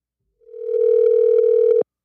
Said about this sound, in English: It's ringing like if he's in the U.S. Let's see if we can get him on the line. This is the will he answer.